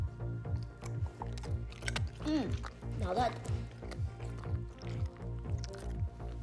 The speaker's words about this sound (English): Some lovely crunchy tortillas. Delicious. Yes, now it's time to hear the sound of them.